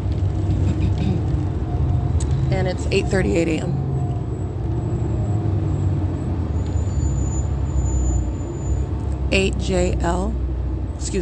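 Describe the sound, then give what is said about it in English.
A bus rumbles steadily as it drives northbound past the intersection of 8th Street and Euclid Avenue, its deep engine drone filling the whole stretch, while a man speaks briefly over it twice. “That's where the entity's keeping the fake scent in alignment with the bus going northbound now.”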